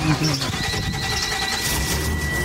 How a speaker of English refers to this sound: The roar of the engine.